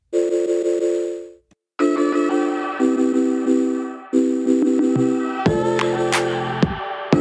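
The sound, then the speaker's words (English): A phone call connects with electronic tones: a steady dial-tone-like hum stops briefly, then a series of shifting, pulsing beeps and tones plays for several seconds. No one speaks. “And so we are just going to jump right into the phone call.”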